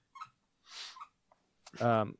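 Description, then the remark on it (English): A dog named Spock chews a squeaky toy in a bed, giving a few short, thin squeaks and breathy puffs, followed by a louder, voiced whine-like squeal at the end. “Do you hear that squeaking? Yes. Yeah, what is that? It's his dog.”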